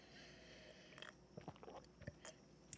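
food or drink, sipping cold coffee

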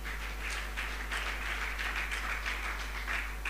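crowd, church audience clapping hands

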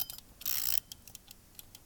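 household object, timer ticking

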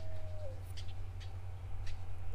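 bird, birds calling overhead outdoors

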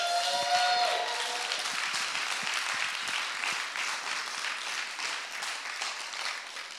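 crowd, audience applause and clapping

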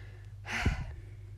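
human body sound, deep breaths

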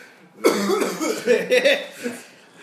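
human body sound, coughing fit

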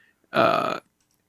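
human body sound, loud burp

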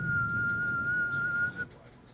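human body sound, person whistling a song

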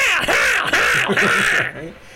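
bird, crow cawing

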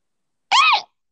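human body sound, sneeze

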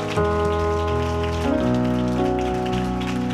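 crowd, audience hand clapping

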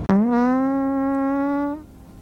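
human body sound, fart

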